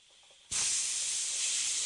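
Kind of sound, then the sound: sound effect, steam hissing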